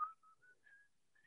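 A person whistles a short tune of four or five brief, clear notes, rising slightly in pitch with small gaps between them, fairly soft, with no talking.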